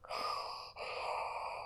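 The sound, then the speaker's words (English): A voice imitates heavy, raspy breathing: two long, airy breaths in a row, fairly loud, with a brief catch between them and no words spoken. “And can hear breathing.”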